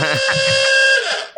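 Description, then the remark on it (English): A harsh electronic buzzer, an alarm sounded as a penalty for interrupting on a show, blares in one sustained, steady burst with a rough, nasal tone, loud and continuous for over a second before cutting off abruptly. “That's the Ben interrupting alarm.”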